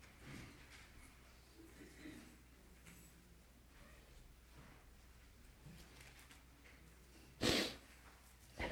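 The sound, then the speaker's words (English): A quiet, hushed church audience during a sermon with faint scattered shuffling, then a single sharp, breathy sniff near the end, fairly loud against the stillness. “A lot of sniffling going on in this place.”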